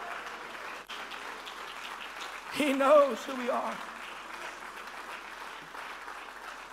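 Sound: audience clapping hands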